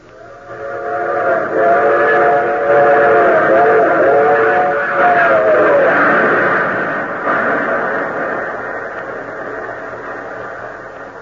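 A train from Washington rumbles steadily along the rails while a loud, multi-toned whistle blows for several seconds near the start, then fades as the rolling clatter continues alone.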